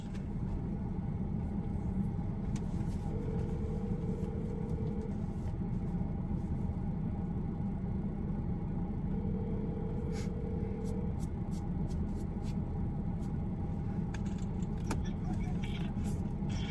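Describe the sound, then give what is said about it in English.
Steady low engine rumble fills the interior of a Ford car throughout, with two long steady mid-pitched tones a few seconds apart and a few faint clicks and ticks on top. “So, yeah, I'm finna go sit in the Ford because the Ford have a mount because I don't want to see him hold his phone this whole time.”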